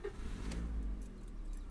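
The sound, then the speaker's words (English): A car engine turns over and settles into a steady low rumble as the car begins to pull away to drive a little further down, heard from inside at moderate volume with no voices. “I'm going to start the car and we'll drive a little bit further down.”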